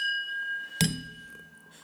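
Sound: wine glasses clinking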